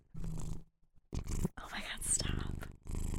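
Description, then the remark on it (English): A cat purrs softly, a low breathy rumble that pauses briefly and resumes, mixed with murmured, whispery vocal sounds. “Yeah, I feel like we should start introducing your cats like by their purr because they're frequent guest spots on this podcast, and everyone should be able to identify them by purr.”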